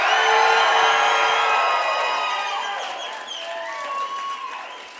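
A loud audience yells and cheers together as a shout-out to people in the Department of Corrections, Perryville, and in Douglas, Yuma, Florence, Tucson and Winslow, many voices whooping and shouting at once, with the roar gradually fading over a few seconds.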